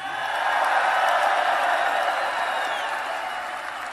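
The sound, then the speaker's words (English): Sustained crowd applause fills the whole stretch, a dense, steady wash of many hands clapping with scattered cheers and whoops rising over it, loud throughout and tapering slightly at the end. “So let's take a little applause, right?”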